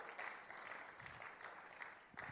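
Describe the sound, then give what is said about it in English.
An audience claps steadily for the whole stretch, a dense, continuous wash of many hands with no voices standing out. “Your clapping is sick in the house.”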